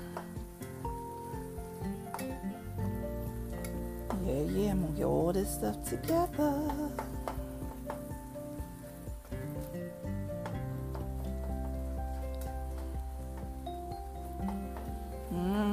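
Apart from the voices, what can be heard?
meat sizzling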